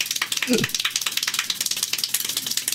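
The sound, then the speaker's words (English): Extremely fast hand clapping from a Guinness World Record-breaking clapping performance, a steady blur of sharp, crisp claps at roughly eighteen per second, almost like a rattle. A brief low voice sound briefly breaks through near the start. “broke the Guinness Book of World Records for clapping. Listen to that.”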